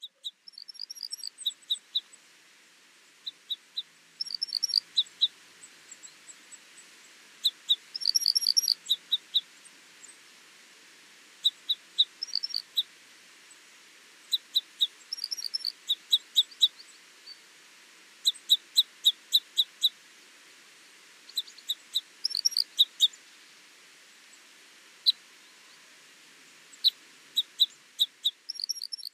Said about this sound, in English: Common crossbills call frequently whilst moving about in the trees, making a high-pitched metallic sound like glip glip.